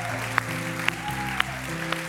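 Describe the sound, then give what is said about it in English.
A church audience claps in unison on a steady beat, four sharp claps about half a second apart, over sustained music. “Raise your hand. Clap. Stomp. Shout. Cheer.”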